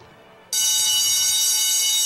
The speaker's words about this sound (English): That's a security alarm.